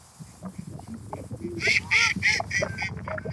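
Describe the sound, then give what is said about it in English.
Several loud, nasal duck calls burst out in quick succession, following a stretch of low background murmur and rustling. “See, they're laughing at me.”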